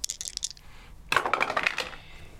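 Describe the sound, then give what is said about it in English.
Dice clatter and tumble across a hard table in two quick bursts, a short rattle followed by a louder, busier roll of small clicking impacts, with no voices. “See what happens when you don't kiss your dice?”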